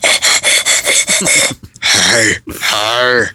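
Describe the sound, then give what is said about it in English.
An excited dog pants in a quick, steady rhythm of about eight loud, breathy huffs, then lets out two longer, voiced breaths with a slight whining tone. “Man, my dog was excited to talk to you. He is. And or breathe at you.”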